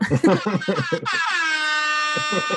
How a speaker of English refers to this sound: Oh, is that the knockout horn? Knockout air horn right there.